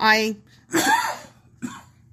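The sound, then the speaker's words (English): A person coughs loudly: a rough, throaty burst, then a harsher cough, and a short final hack, with no words spoken. “I agree with you 100%, right up until the cough.”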